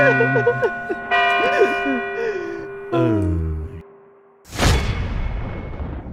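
A sustained ringing bell tone with long, steady overtones, partly overlaid by wavering voices, which cuts off and is followed by a sudden loud noisy whoosh or burst.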